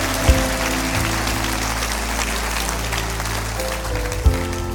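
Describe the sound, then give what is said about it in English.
An audience at a church service claps hands steadily when called to clap all over the house, a dense, continuous wash of applause that holds for several seconds, with low sustained tones humming underneath and a couple of sharp thumps near the start and end. “Clap your hands all over the house now. Clap your hands.”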